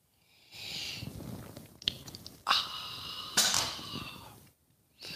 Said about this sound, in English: Fill it with your favorite liquid. I like coffee. And join me now for the unparalleled pleasure, the dopamine hit of the day. The thing that makes everything better. Everything. It's called the simultaneous sip. It's going to happen now. Go.